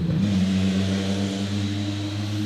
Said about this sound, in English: Waiting for the extremely loud car to go past. It's been pretty busy. Yeah, it's fucking people that don't have exhaust systems on their cars.